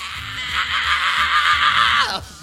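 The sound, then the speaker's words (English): A male singer's harsh, sustained scream rides loud over a pounding rock backing for about two seconds, then breaks off in a falling, strained tail; the song is a cover of a 1963 hit. “He sounds like he's straight screaming.”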